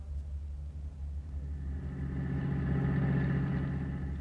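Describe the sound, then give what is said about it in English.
A car engine hums steadily, a low droning rumble that swells a little louder midway and holds. No one speaks. “I'll meet you outside in the car.”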